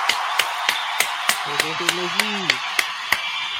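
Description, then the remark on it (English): Steady, evenly spaced claps, about a dozen sharp hand claps at a brisk regular pace, with a short voiced cheer rising over them midway through, given as a round of applause for someone's birthday. “So let me round of applause for my guy”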